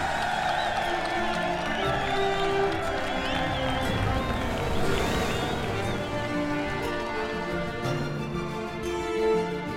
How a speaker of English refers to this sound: Then the water receded, the ship rose up again out of the brine, and he heard a momentous cheer erupting behind him.